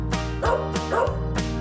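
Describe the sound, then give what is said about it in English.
A dog barks three times in a steady rhythm, each bark loud and sharp, with a low continuous hum running underneath. “Right, the dogs go as they chase and tease the cats.”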